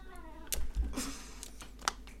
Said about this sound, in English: There's a bit of a crisis there because the cat's decided to attack the television.